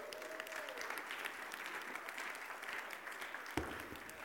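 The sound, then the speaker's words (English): An audience claps steadily for four men being invited up, a dense, even patter of many hands that stays at a moderate, unchanging level with no voices on top, and a single brief thump near the end. “I did not warn them, so please show appreciation and clap for my friends here.”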